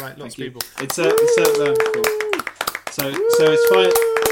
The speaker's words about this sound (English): Insert round of applause.